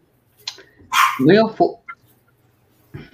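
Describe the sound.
A dog out front barks in a short burst of two or three loud yips, with a brief voice murmuring faintly before and after.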